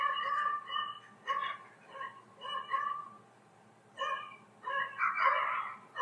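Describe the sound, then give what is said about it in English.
A small dog barks outdoors in a quick series of high-pitched, slightly strained yaps, coming in uneven bursts with short pauses, with no one talking. “Shit's going down outside.”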